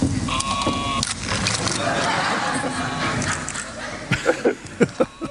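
A mechanical sheep bleat from a wooden box with holes in it, a piece titled Sheep in the box, that runs around the room, wavering and fairly loud, layered over whirring and rattling noise, followed by a few sharp clacks near the end.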